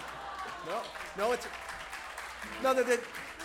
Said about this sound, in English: Nice, you got applause for your banter. That's never happened to me in my life.